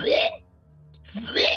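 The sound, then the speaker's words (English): Two harsh, raspy coughing bursts, loud and breathy, separated by a brief quiet pause, as someone deliberately coughs horribly with their back turned. “And then I'm going to start coughing horribly.”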